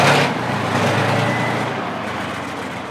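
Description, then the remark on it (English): A hulking armored mine clearer of over 40 tons rumbles loudly and steadily as it lurches into an open field, its tracks grinding across muddy ground while clearing unexploded mines, the noise slowly easing off toward the end. “The hulking armored mine clearer lurches into an open field.”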